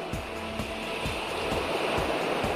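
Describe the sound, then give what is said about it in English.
Ocean waves make a steady, loud rushing hiss, with soft low thuds pulsing about twice a second underneath. No one speaks. “Sounds like waves to me. Everybody knows that sound. That's the ocean.”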